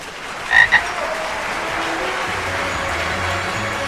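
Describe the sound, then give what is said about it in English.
A frog croaks twice in quick succession, two short, nasal calls near the start, followed by a steady low background hiss with no voices, from the audio play Hoppily Ever After, Love and the Loveland Frog Conquers Most. “You've been listening to Hoppily Ever After, Love and the Loveland Frog Conquers Most, written by Anna Crawford and performed by the Akadekagonagon Theater Works.”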